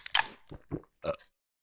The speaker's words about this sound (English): The wolf went to the pantry and ate and drank to his heart's content.